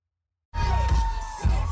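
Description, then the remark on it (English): After a half-second of silence, a loud crowd at the LA Pride Parade in Los Angeles erupts into sustained cheering and shouting, with a couple of heavier bursts of noise and a steady whistle-like tone running through it. “she was at the LA Pride Parade”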